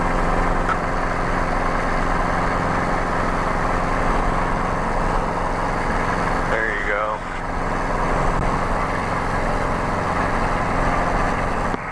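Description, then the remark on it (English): A Guimbal Cabri G2 helicopter engine roars steadily as it slowly lifts off on an introductory training flight, a dense, constant drone with a layered turbine whine and a brief wavering dip partway through. “Guimbal Cabri G2 Intro Flight”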